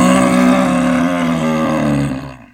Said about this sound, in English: So he lets out a loud, bellowing roar.